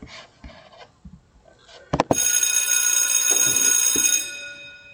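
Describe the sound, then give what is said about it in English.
After a couple of sharp clicks, an electric bell rings loud and continuous for about two seconds, a bright metallic ringing with rich high overtones, then cuts off, signaling the start of the show's chat segment. “When you hear that bell, class is in.”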